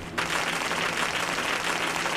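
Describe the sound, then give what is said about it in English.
Applause from a pre-recorded clap track breaks in abruptly and holds steady: a dense, even wash of many hands clapping at once, loud and continuous, with no voices over it. “Clap track. We got claps.”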